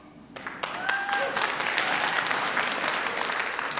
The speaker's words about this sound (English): I'd like to point out it's the millennials who are clapping right then.